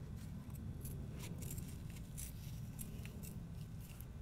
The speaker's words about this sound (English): And so then I went in with some scissors, cut those out. Do one of them right now for you. A little small.